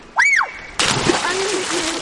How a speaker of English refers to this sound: A half hour outside of Washington, D.C., a summer scene plays out on the Severn River. Evan Ramil is watching the kids swim.